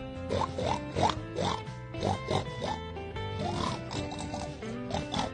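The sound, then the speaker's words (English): A pig oinks over and over in short, snorting grunts, fairly loud, with a steady tonal background running underneath the whole time. “Can you think of an animal that starts with the letter P? Puh. Puh. Yeah! Pig!”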